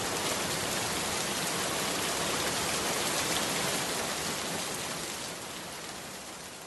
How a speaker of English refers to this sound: Shall we put our rain max on because it's starting to rain?